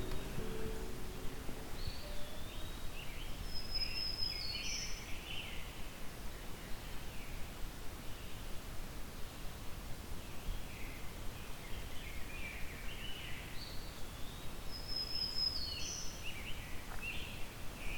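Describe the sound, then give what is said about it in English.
Scattered, intermittent songs of a black-throated green warbler, eastern wood-pewee, rose-breasted grosbeak and northern cardinal over a steady bed of rustling background noise, with no one talking. “I'm hearing black-throated green warbler, eastern woodpewee. It's rose-breasted grosbeak and northern cardinal.”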